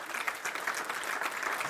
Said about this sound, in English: I want you to clap your hands right there. Would you do that?